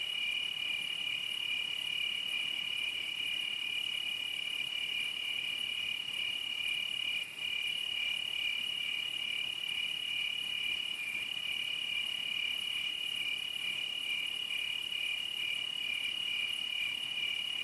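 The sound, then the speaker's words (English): A steady, continuous chorus of crickets chirping at night, a high shimmering trill that fills the scene evenly without pause, moderately loud and unaccompanied by any voices. “As you listen to the sound of the crickets and gaze up into the stars,”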